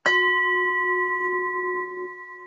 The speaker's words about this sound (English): All right. What shall we do next? Let's ring our gong and see if we have any inspiration.